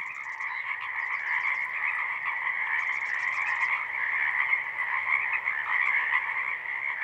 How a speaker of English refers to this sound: First, I'll start with the evening frog chorus in the Lewis and Clark National Historical Park.